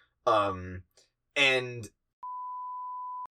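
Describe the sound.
Two short bursts of a voice, then a loud, steady single-pitch censor bleep lasting about a second, sounding alone after the talking stops.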